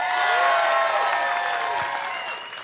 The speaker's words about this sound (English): Here's what we got to do by applause. All right, so first up, make some noise for red.